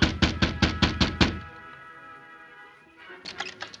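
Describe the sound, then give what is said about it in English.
The Lone Ranger knocks on a house door with his left hand, a gun in his right: seven quick, firm knocks in a steady rhythm, a brief ringing resonance after them, then a softer cluster of a few more knocks. Nobody speaks. “Outside the house, the Lone Ranger prepared for trouble, held a gun in his right hand as he knocked on the door with his left.”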